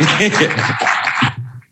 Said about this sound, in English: everybody put a round of applause for them, please.